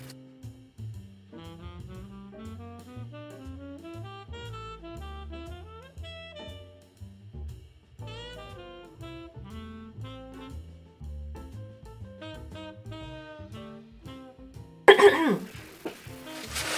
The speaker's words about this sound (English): Give me a second, let me blow my nose. Let me try not to blow my nose in your ear, especially for the people that will listen to this in the podcast.